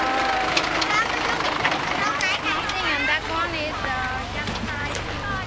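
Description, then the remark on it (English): A garbage truck's engine rumbles low and steady as it pulls up and idles, mostly buried under a busy mix of many voices calling and chattering. “It's now the truck is coming, so maybe they will be busy to try to...”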